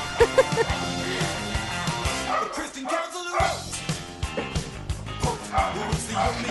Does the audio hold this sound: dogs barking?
yes